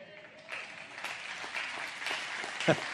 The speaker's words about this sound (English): And before I get done, instead of having three people clap, I believe it's going to be outrageous, the excitement